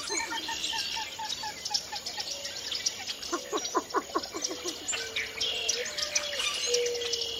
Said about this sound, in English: Along the water's edge, common moorhen darts in and out of the rushes, and a least bittern calls above a chorus of northern cricket frogs.